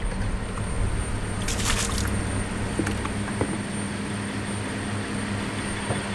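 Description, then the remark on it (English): Water splashes in a few short bursts beside a fishing boat against a steady, low engine drone, the loudest splash coming early before smaller slaps trail off. No one speaks. “Splashing around here.”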